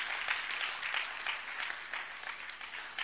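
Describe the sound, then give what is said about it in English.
A crowd gathered at a religious service claps continuously for about three seconds: a dense, steady wash of many hands with a crisp, bright texture and no voices. “Those who are clapping, I think you are caught in a revelation.”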